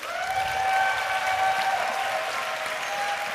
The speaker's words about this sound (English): What I would love for you to do is these guys are going to share very honestly, so I want you just to give them a massive round of applause for a moment.